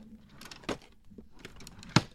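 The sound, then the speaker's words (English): A wooden wardrobe drawer slides with a brief scraping rub, then shuts with a sharp, loud knock. Two main impacts with faint rustling between them, and no voices. “and all my wardrobe drawers were opening and closing. That, you know, that noise of a drawer, like listen to this.”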